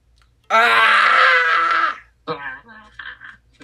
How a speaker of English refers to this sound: Oh, I said the secret word. Now you guys have to scream.